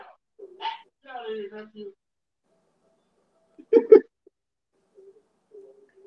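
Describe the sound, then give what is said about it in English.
A dog gives two quick, loud barks, following some faint, indistinct voice-like sounds, with quiet background murmurs trailing afterward. “Here, sorry, the dog them bars.”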